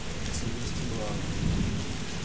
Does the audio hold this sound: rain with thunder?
yes